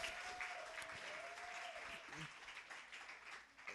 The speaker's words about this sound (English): Can we just give a hand clap for the Vitality service to Metro Praise?